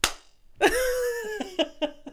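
Sharp hand claps with no voices: a single crack, a pause, then a clap followed by a lingering ringing tone, then four quicker claps in an uneven rhythm.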